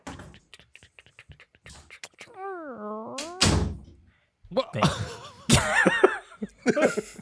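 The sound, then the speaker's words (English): A door shuts with a solid thunk, and a second knock-like bang follows moments later, surrounded by vocal sounds, a drawn-out sliding voice and some chuckling. “Wow, you really closed the door.”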